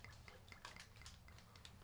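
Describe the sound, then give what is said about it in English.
A drink is poured into a glass, a steady splashing gurgle with small clinks and drips running under it, continuous for the whole short moment with no one talking. “Pour me one of them, too.”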